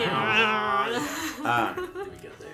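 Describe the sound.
A person yowls and growls in an angry cat-like voice, drawn-out wavering cries at close range, loud and continuous over a couple of seconds.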